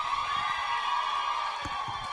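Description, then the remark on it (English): A Gateway Youth audience cheers and whoops for a youth worship team member introduced to bring a message, a dense, steady roar of voices that holds at an even, fairly loud level for a couple of seconds, with no single voice standing out. “Can you please give a big cheer”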